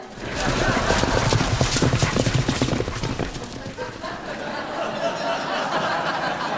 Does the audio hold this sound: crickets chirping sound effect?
no